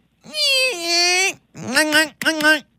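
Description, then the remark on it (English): A voice imitates a firework with three loud, high whistling wails: one long sustained tone, then two shorter ones, each bending up and down in pitch. “And there's one of the fireworks. It kind of goes like.”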